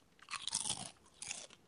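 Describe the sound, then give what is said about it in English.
Loud crunching of Ruffles Double Crunch potato chips being chewed, two bursts of crisp crackling separated by a brief pause, with no talking. “So you've had two chips. That's four times the crunch that you would have otherwise.”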